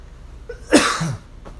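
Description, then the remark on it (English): A single loud cough from a person who is sick bursts out with a harsh, breathy rasp that tails off into a short voiced grunt, followed by a faint breath. No one speaks. “That was unplanned, even though I'm pretty sure it sounded kind of fake. It felt fake. But I'm coughing.”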